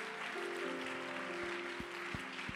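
An audience at a church service applauds its guests steadily throughout, a dense wash of many hands clapping at once, with sustained organ-like chords and a few deep drum thumps sounding beneath it.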